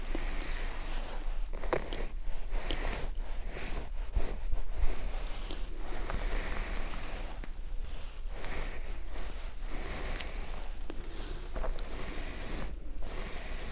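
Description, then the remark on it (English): A hairbrush is drawn again and again through hair that is a little tangled from cords, giving soft, scratchy bristle swishes in a steady rhythm with brief pauses between strokes. No one speaks. “And let me brush your hair because a little bit tangled with all the cords.”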